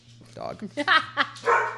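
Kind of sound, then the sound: animal, dog barking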